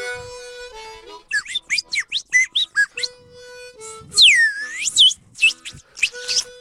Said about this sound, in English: Some of that slide whistle,